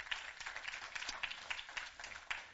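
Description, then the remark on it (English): An audience gives the Lord a hand clap, clapping steadily for a couple of seconds, a dense patter of many hands with sharper individual claps popping out now and then, fairly bright and even in loudness. “Would you give the Lord a hand clap?”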